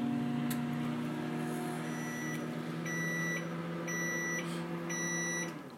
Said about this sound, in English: We're going to start, though, this mixture in the microwave oven, and we're going to give it 2 minutes to start now.